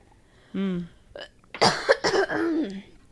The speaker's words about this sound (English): And also, I ran out of my Flonase, so I'm back to coughing. And sputtering.